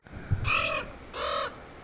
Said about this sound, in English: Ravens have deeper voices, and they make a croaking noise, which I actually can't replicate. So let me play that for you.